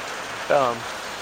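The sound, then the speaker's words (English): Steady rain falls outside, hissing evenly throughout, a soft continuous patter, briefly interrupted midway by a short voiced sound from someone. “I love to hear the rain.”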